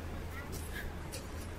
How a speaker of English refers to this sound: I'm kind of stuck in trying to cross this traffic. I'm at a crossroad here.